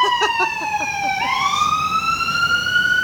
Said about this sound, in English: That's going to be coming right by your apartment, yep, isn't it? Yep. Oh, yeah, he's using both the sirens, too. Wow. Yeah. There's nobody on this road, dude.